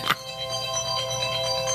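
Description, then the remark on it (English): A mobile phone ringtone plays steadily during a conversation, a sustained electronic melody with bright layered tones, moderately loud, opening with a brief sharp click. “Turn your phone off, Doc.”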